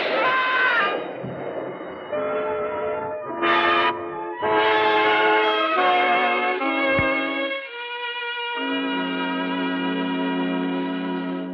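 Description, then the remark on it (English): A loud elevated train passes, its clattering rumble mixed with sustained, shifting horn-like tones that swell and hold for the full length, with no voices. “You're waiting for the elevated train to drown out the shot.”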